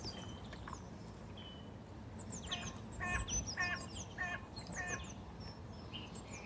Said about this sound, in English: Just being in to feed the chickens.